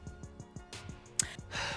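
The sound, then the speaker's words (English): Heavy breathing right on the microphone, with loud breathy gusts and a rapid pulsing thump underneath; no one speaks. “Sorry, I was breathing all up on that one.”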